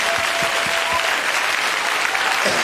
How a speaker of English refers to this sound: Give him a round of applause, please.